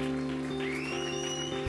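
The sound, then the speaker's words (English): A crowd claps in a dense, steady round of applause that holds at an even, fairly loud level with no speech, a faint steady hum and a thin rising whine running underneath. “Let's give Ben a round of applause.”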